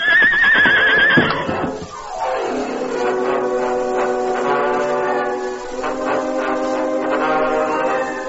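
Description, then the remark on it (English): A brief scuffling clatter opens as Scout, Tonto's paint horse, stumbles on broken, pitted ground. The horse then lets out a loud, drawn-out whinny that slides down in pitch and continues as a long quavering neigh. No one speaks. “Tonto guided his paint horse skillfully, but there was a small treacherous spot he failed to see.”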